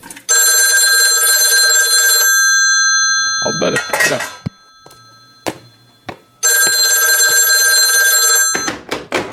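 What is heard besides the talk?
telephone bell ringing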